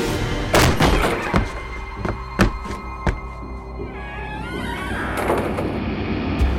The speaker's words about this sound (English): Margrét's boots hit wood as she reached Helga's doorstep. She flung open the door and hurled herself inside.